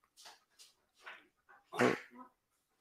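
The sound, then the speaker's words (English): A dog, Coco, wanting to go out and exercise while other dogs are taken to the field to play Chuck It, lets out a few short, soft whines and yelps, then one louder sharp bark followed by a brief whimper, with no one talking. “So we have Coco, who dogs are being rotated now”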